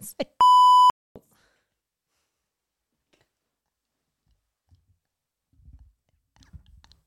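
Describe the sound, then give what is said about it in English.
A sharp, loud electronic censor bleep, a steady pure tone about half a second long, cuts in near the start over a spoken word, followed by near silence and faint low murmuring voices toward the end. “I'm going to beep that out.”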